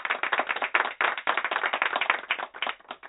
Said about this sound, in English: You get some applause because that's where it's always about the children, girl.